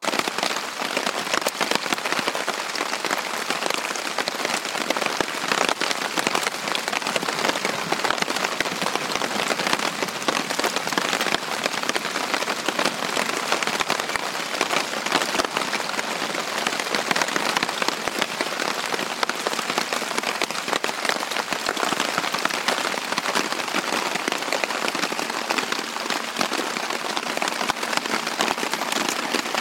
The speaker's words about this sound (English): It is quite soothing, actually, lying in the tent listening to the rain. And when I woke up next morning, it was still raining. And this is what it sounded like.